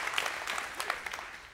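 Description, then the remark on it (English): A crowd applauds the medical community in a dense, steady burst of applause, many hands overlapping into a bright, crackling wash that holds at a moderate level and starts to thin toward the end. “Can we just give a round of applause real quick to the medical community here?”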